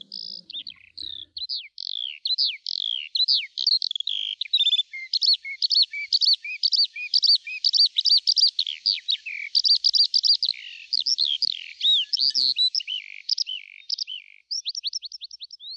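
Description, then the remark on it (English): A songbird sings a long, continuous stream of rapid, high-pitched warbling notes and trills, clear, with no voices or other sounds alongside. “Is it for thee the linnet pours his throat? Loves of his own and raptures swell the note.”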